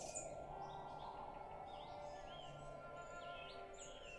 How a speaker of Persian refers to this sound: دره لطیان و بهار دامنه افجه، اولای اردیبهشت و مست شدن از سبزه و مستی پرنده های بیتا و پرحرف. تو این فصل پرنده ها زبون به دهن نمیگیرن و روی هیچ شاخه قرار ندارن و تراوت بوی علف نشعه عجیبی داره.